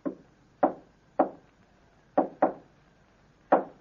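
Six sharp knocks on a wooden living room door in a deliberate pattern: three evenly spaced raps, a quick double knock, then one final rap, fairly loud with no voices.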